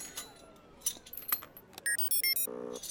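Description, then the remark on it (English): A door lock being picked by Engineer Tormar: light metallic clicks and jangling scrapes, followed by a quick run of short high electronic beeps and then a steady low buzzing tone. “With your permission, Your Highness, I will attempt to pick the lock.”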